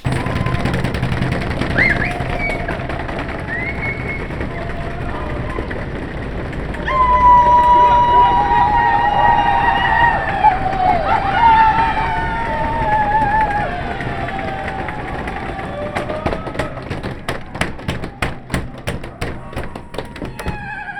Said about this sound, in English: you get everybody from every show in their dressing rooms banging on the windows